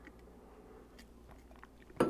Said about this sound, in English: I'm going to grab a quick drink of water.